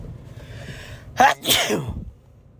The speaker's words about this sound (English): Excuse me while I sneeze there for a second.